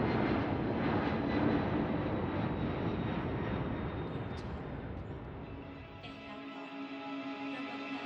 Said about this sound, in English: Finally, the plane landed.